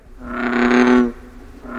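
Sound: frog croaking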